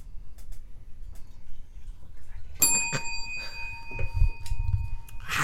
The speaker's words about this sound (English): Hit the bell because I felt in my spirit like it was necessary.